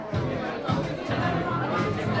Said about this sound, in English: I am so excited for this final episode of season 1 of the Never Settle Show as the crowd continues to come in.